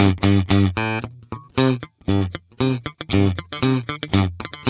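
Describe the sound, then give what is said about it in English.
Twangy country guitar plucking: a quick run of bright, nasal, picked notes with sharp attacks, played loud in a bouncy rhythm with short pauses between phrases, and no voices. “and you're producing that twang by the way you're plucking the guitar, maybe the way you've dialed in the different tone wheels and timbres of the instrument.”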